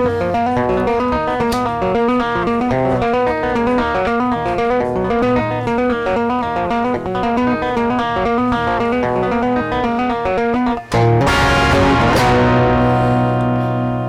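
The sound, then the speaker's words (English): Loud, steady music run through a gritty distortion effect, dense buzzing harmonics throughout, then a brief dropout and an abrupt switch to a harsher, brighter, more saturated tone near the end as the distortion setting is changed. “Wait, let me find a better distortion than that. I like that distortion.”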